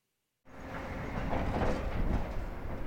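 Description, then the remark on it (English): Heavy trucks hauling material from the Moab Uranium Mill Tailings Remedial Action Project in Moab, on the banks of the Colorado River, rumble in after a moment of silence, a loud, steady low roar with mechanical rattling and clatter that holds without letup. No one speaks. “Those sounds are trucks hauling material from the Moab Uranium Mill Tailings Remedial Action Project.”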